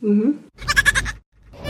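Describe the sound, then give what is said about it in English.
A goat bleats in a short wavering call, followed by a louder, pulsing, buzzy bleat, then another call begins; fairly loud with no talking. “Okay, well, we've got some goat calls. Let's play the group one here.”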